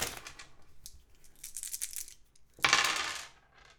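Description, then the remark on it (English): Six dice are rolled to generate two chords for a musical improvisation jam: they clatter and tumble, a rapid scatter of hard little clicks, then a louder burst of rattling near the end as they settle. No one speaks. “For this jam, we're going to roll six dice, which will generate two chords.”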